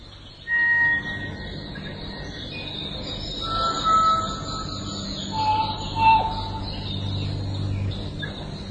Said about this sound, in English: One of the most welcome sounds, though in nothing like the intensity of the past bird song, is the call of the kōkako.